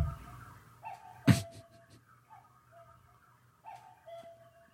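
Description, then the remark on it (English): A cuckoo clock sounds its soft, hooting two-tone calls several times, punctuated by a sharp mechanical clack, with a faint steady hum underneath. “Did you hear the cuckoo?”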